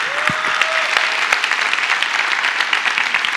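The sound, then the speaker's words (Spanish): An audience applauds God together in a sustained, dense burst of clapping at a steady, fairly loud level, with a brief tone and a few thumps at the start. “Acompáñenme a darle un aplauso fuerte a nuestro Dios.”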